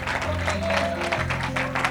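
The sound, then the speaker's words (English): An audience claps and cheers in praise of the Lord during a morning service, over sustained low music, the crowd noise a steady, dense wash of many hands and voices at moderate loudness. “Oh, why don't you just take a moment and clap your hands and lift your voice?”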